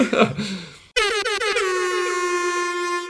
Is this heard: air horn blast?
yes